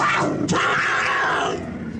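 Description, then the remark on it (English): A low, rough growl of a puma in an elevator rumbles steadily for about two seconds, loud and sustained with a brief harsher snarl near the start, and no talking over it. “That we're in an elevator with a puma?”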